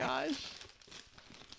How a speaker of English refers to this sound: So I'm going to have to open it. Let me get all the wrapping paper off.